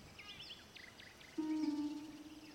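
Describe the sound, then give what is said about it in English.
A bird gives a few quick, high chirps that pass by briefly, followed by a louder, steady low droning tone. No one speaks. “By the way, did you happen to hear the bird as it flew by?”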